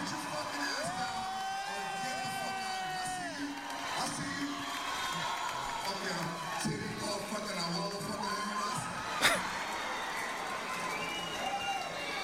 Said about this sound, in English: So everybody's cheering this guy on, cheering George Lopez on, and he does bring up a good point.